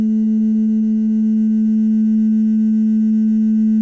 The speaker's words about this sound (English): The synthesizer sound that you hear at the beginning is actually a glass that I had, and I made it turn into like a glass harmonica by, you know, using, like, wetting my finger and running it around the rim.